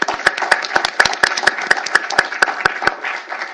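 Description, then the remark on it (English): An audience applauds steadily for Mr. Harrison, a dense patter of many hands with a few sharp claps standing out in a regular rhythm; no one speaks over it. “Okay, let's give Mr. Harrison a round of applause.”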